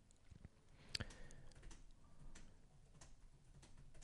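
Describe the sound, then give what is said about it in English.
A man types on a computer keyboard: quiet, irregular tapping of keys with a little cadence, one sharper click near the start among a loose patter of softer keystrokes. Nobody speaks. “Do you hear his typing?”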